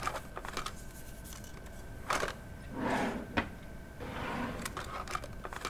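Rummaging at a desk while searching for a tractor key: drawers slide open and shut with a scraping rumble, mixed with sharp wooden knocks and small rattling clicks, and no voices.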